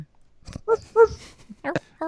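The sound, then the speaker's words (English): A human voice imitates a dog barking with a handful of short, fairly loud woofs at an uneven pace. “Woof, woof, woof, woof, woof. It's the Forever Dog.”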